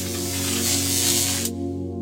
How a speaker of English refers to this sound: He hits the fence. I see his body rack and hear his skin fry.